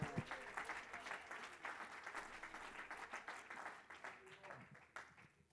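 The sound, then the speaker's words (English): A large church audience applauds steadily, clapping their hands unto the Lord during a service: dense overlapping hand claps for several seconds, with scattered voices murmuring and calling out beneath the clapping. “Can we lift our hair, clap our hands unto the Lord?”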